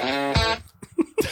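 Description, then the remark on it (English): A single sneeze: a brief voiced, rising intake gives way to a loud, sharp, noisy burst, followed by a few faint, scattered murmurs. “No, sorry, that was just a sneeze.”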